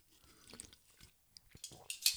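A quick, quiet sip from a drink: a few soft mouth clicks and faint wet slurping sounds, ending in a brief lip smack, with no talking.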